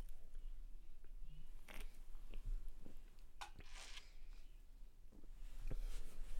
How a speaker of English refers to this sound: Matter of fact, I'm going to take a sip. I'm going to take a swig real quick. Hold on.